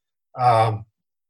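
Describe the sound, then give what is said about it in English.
A single short, voiced cough lasting about half a second, with a throaty, slightly groaning tone, then silence. “excuse me. We don't have a cough button on our.”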